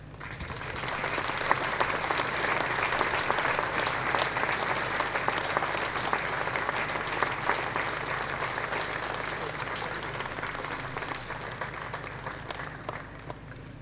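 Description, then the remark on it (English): A large crowd applauds steadily at a statue unveiling as the presentation party, including 1968 European Cup winners Alex Stepney and Brian Kidd, walks up the steps: a dense, continuous wash of many hands clapping that holds at an even, loud level throughout without fading. “You can keep the round of applause going until they walk up the steps.”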